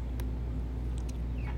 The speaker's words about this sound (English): And that is my bird. I have a bird. Yeah. It's my mom's bird. And it's very loud.